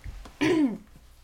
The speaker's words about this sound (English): Sorry, guys. I have to clear my throat here.